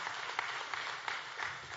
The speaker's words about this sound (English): I think you should give the Lord a hand clap for that right there. Amen.